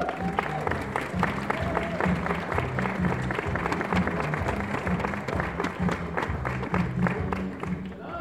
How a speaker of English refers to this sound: Please give a huge cheer for Dan and Bex from Fun Kids.